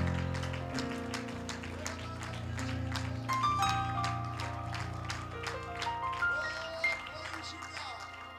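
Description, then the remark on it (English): A crowd claps hands in a steady, rhythmic beat in praise to the Lord during a preaching service, over sustained organ or keyboard chords, the claps fairly loud and continuous throughout. “Why don't we clap our hands to the Lord and give God praise?”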